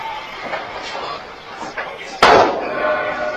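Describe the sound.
A store door slams shut with a single loud bang partway through as people run out and lock it behind them, its ring fading afterward, over a steady background of indistinct voices.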